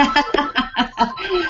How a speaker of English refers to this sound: It's so funny. I think both of us are being quite popular this morning. Everyone's trying to get to us through our phones and through Skype.